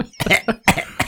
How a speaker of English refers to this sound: That Marco is a good dad moment was brought to you by … COVID cough.